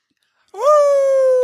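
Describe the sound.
After a brief silence, a single voice lets out a mock howl that swoops upward and then holds a steady, loud tone, with no other sounds around it.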